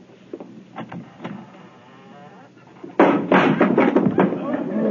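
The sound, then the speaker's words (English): A door falls off its hinges: after a few quiet knocks and creaks, a sudden loud wooden crash hits and clatters on for a couple of seconds, with voices underneath. “Door needs a little tightening too, don't it? Just step over the thing”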